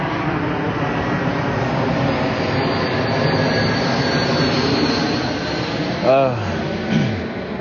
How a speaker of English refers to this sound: Oh, the plane.